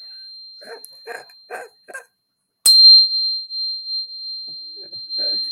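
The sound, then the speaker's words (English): A crystal is struck sharply and rings out loudly with a clear, high, sustained tone that lingers to the end, preceded by a few short yelping, bark-like bursts and a faint steady whine. “I also have these little guys here, which actually, oh, thing with a crystal. Oh, that was really loud.”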